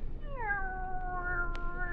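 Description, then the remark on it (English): A single drawn-out cat meow, starting higher and sliding down into a steady, sustained tone that lasts nearly two seconds over a low background rumble, with a brief click near the end. “Will you listen, Kitty?”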